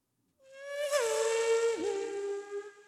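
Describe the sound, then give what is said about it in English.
A voice imitates a high-revving V10 Formula 1 car engine: a sustained, buzzing, nasal whine that climbs in pitch, dips briefly as if shifting gear, then holds steady and fades out. “Everyone, give me your best F1 car sound.”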